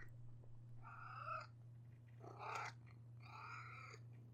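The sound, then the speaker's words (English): A pet cat named Amelia, held up to the microphone, purrs right up against it, a steady low rumble throughout, broken by three short, brighter trilling bursts. No one speaks. “I don't think you should be straining your cat like it was pasta into the microphone.”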